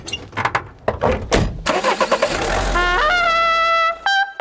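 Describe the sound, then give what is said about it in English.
A few clicks and clunks, then a car engine cranks and catches as a road trip begins, revving up loudly into a steady, rising whine before dropping back abruptly near the end. “but let's get right ahead. Let's start the road trip we call...”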